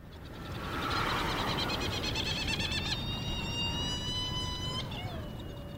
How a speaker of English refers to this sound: Yeah, here we are on Round Island, not far from the island of Mauritius in the Indian Ocean. And these are flying all around us, are these amazing gadfly petrels called Herald petrel or Trindade petrels.